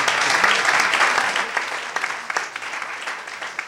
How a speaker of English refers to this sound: Welcome to the Penn World Voices Festival. Give yourselves a round of applause for being here, please.